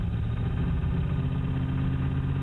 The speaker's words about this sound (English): It sounds like an older car and the fan hitting the radiator. All right, we're going to play that one more time for folks to listen to. It sounds like an older car and the fan's hitting the radiator.